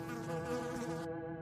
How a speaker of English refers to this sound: Just that same droning buzz from the black mass of insects circling him. The constant tapping of the flies colliding into his clothing gave him the willies.